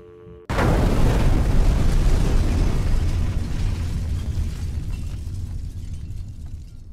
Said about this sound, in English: An explosion has rocked the corporate offices of Senecam Biotech Corporation, destroying millions of dollars worth of research and possibly resulting in at least one death.